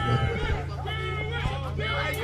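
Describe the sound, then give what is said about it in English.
A large arena crowd at a wrestling match roars and cheers in a dense, continuous wall of noise, loud, with a steady low rumble and overlapping voices throughout, as a wrestler takes a staple to the face. “Right in front of the crowd, and the crowd is eating it up like it's candy.”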